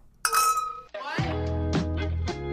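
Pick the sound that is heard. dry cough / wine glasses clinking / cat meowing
wine glasses clinking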